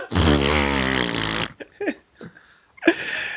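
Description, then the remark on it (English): A voice imitating an elephant fart blows a loud, drawn-out, buzzing noise, like an elephant's trumpeting, lasting over a second, followed by a few softer vocal snorts and a short final burst. “Welcome back to 98.5 Cool Jazz, all elephant farts, all the time.”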